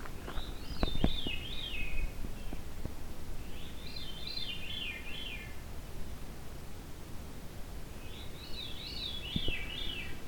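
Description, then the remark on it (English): A Veery thrush sings three separate phrases, each a breezy, flute-like spiral that swirls downward, with pauses of a few seconds between them over a soft background hiss. “This is the thrush with the veer call, thus Veery.”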